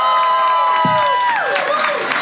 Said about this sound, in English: And on that note. On that note, everyone give a huge round of applause